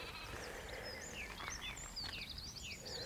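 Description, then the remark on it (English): Sheep and lambs bleating faintly on open moorland with gorse in mid-June, mixed with busy high birdsong chirps and whistles from song thrushes, wrens and blackbirds over a steady low outdoor rumble. “Song thrushes, wrens, blackbirds, sheep, lambs, hoverflies all over the gorse.”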